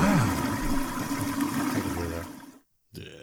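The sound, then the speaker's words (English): A toilet flushes with a loud, rushing gurgle of water that churns for about two and a half seconds, then cuts off abruptly; after a brief silence, another sound begins. “Chris's Flush of the Week.”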